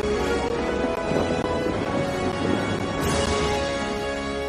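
Heavy rain pours down in a steady, dense roar, with a deep rumble of thunder rolling underneath and a brief surge of hiss partway through. No one speaks.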